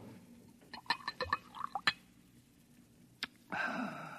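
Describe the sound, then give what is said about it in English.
A few quick glassy clinks and drips, a pause, then a steady splashing pour of liquid into a glass. Fairly quiet, with no talking. “Pour me a little more of that muggle juice.”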